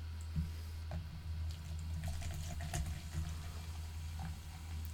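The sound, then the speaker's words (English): A drink pours steadily into a cup for several seconds, a continuous trickling stream with small splashes and clinks, moderately loud, with no talking. “Here you go, dude. Pour it in your cup, dog.”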